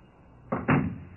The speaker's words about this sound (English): Why didn't you close the door? I did. It was a long time closing. It got stuck on the mat.